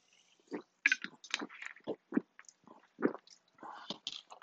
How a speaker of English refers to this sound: All right. Take a sip of water here.